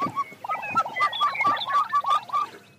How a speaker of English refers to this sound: What's that? So that would be a chicken.